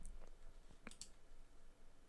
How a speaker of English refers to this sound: I don't want to be the guy that's like clicking around on the internet whilst trying to do a podcast.